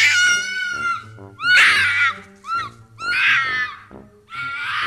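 A fox screams: shrill, raspy screams repeat in a series of four or five loud bursts, each harsh and wavering like a distressed human shriek, unaccompanied by talk.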